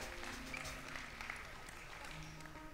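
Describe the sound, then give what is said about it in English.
An audience claps their hands in a dense, uneven patter that holds steady for a few seconds, with faint voices murmuring underneath. “If you're happy, you know it, clap your hands.”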